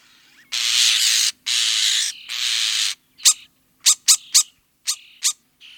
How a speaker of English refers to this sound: That was a European starling. Starlings form big flocks in the wintertime that can make a massive amount of noise. They have an impressive array of sounds, including up to 10 different call types,